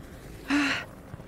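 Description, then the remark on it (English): A single sharp, breathy gasp for air from a person who cannot breathe, fairly loud, lasting about a third of a second with a slight voiced edge, surrounded by quiet. “Doc, I can't breathe.”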